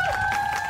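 A short burst of a radio traffic report music bed, hit by mistake on a hotkey instead of applause: two steady, sustained synth tones hold level under a soft, busy wash, with no voices, cut off after under a second.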